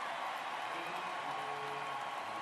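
An arena crowd at Oracle cheering during a Warriors basketball game, a steady, dense roar that holds at an even, fairly loud level throughout, a continuous wash of many voices with no single voice standing out.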